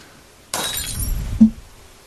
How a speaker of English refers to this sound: Ma'am, the TV broke, and so did the lamp. The lamp broke, too. Why? What do you mean, why? It broke, because I just kicked it again.